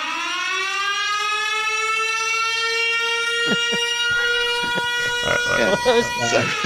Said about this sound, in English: Wait, guys, what was that siren? It means it's time for our plays of the week on Make Room for Sports.